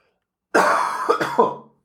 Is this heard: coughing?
yes